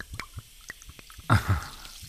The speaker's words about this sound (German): Guck, das zwirbelt so hier, das Tonic Water.